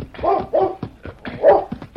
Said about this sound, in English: Hey, where is it? There. It's a dog. Yeah, there's a dog down there